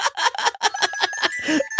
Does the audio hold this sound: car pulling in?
no